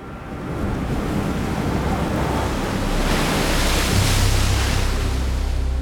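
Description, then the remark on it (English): Steady surf washes and breaks on a shore, with a swell building around the middle, while wind rumbles and buffets through a broad, continuous roar. No voices are present. “Lilith waited by the Red Sea for hours. She sat on the damp sand, the cold wind biting her skin”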